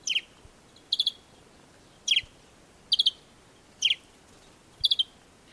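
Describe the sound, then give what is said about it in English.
Desert sparrow (Passer simplex) calls in the Sahara: repeated short, bright chirps in pairs and triplets, spaced about once a second, clear over a faint background hiss. “A great example of a bird that lives in the Sahara is the desert sparrow, Passer simplex.”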